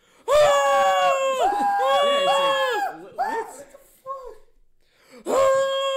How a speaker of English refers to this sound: What is with that scream, though?